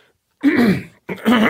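cough

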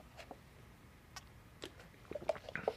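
sipping water

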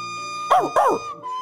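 dog whimpering

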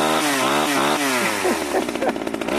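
dental drill whirring

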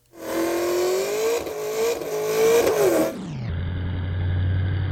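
pickup truck engine revving

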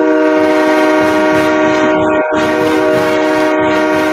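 hockey goal horn

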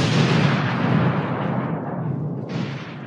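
thunder

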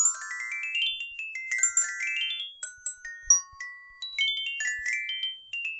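phone ringtone jingle

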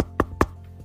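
knock on a door

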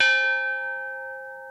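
meditation bell ringing

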